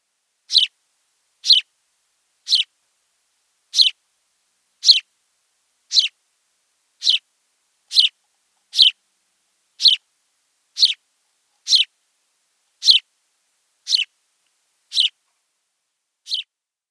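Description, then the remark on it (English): A house sparrow repeats a simple, bright chirp about once a second, sixteen or so near-identical notes in a steady rhythm, clear, with silence between calls. “That's our first bird today, and it is the house sparrow.”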